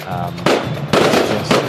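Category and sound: sound effect, fireworks exploding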